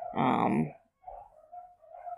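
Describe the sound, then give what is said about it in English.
One loud, drawn-out bark rings out, followed by fainter whining, yelping dog sounds that carry on in short bursts. “Holy crap, those dogs.”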